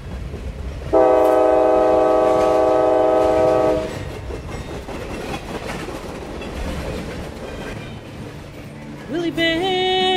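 A loud, steady train horn blares for about three seconds, then a train rumbles along the rails with rhythmic clatter, and a second, higher horn sounds near the end.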